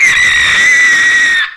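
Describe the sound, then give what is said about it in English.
A single loud, shrill scream held at a steady high pitch for about a second and a half, harsh and distorted from clipping, then cutting off abruptly. “Did that clip? Oh, yeah. Just sounds awesome, though, as it clipped in my ears.”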